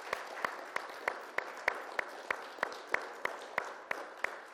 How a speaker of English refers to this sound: I want to give all of our mothers, wherever they may be, I want you to give them a big thank you. And let's give them a big heartfelt round of applause to all of our mothers.